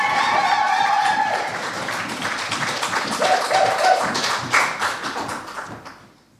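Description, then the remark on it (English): An audience applauds the final poet of the first round at a poetry event with dense, steady clapping, and a few whoops and cheers rise above it. The applause holds strong for several seconds, then tapers off and fades out at the end. “Huge round of applause for our final poet of the first round.”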